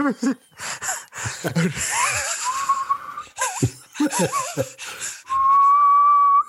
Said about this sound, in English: Just whistling, he's fucking whistling. I'm just whistling to a cup. He's whistling.